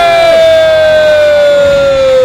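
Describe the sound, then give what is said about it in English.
A loud live-show audience cheers continuously as the final performer is introduced, with a high sustained whoop or whistle riding over the dense roar of voices and clapping throughout. “give it up”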